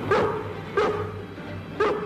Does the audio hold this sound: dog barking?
yes